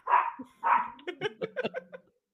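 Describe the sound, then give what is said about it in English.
Two loud barks ring out, followed by a quick run of shorter, higher yips and barks as the dogs, one of them only 3 pounds, keep going while someone pulls in. No one speaks. “The dogs are going off again.”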